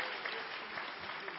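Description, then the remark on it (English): A burst of applause from a group, dense overlapping claps forming a steady, even hiss of sound at moderate loudness, without a clear rhythm, running unbroken for the whole moment. “Yeah, that's worth applause.”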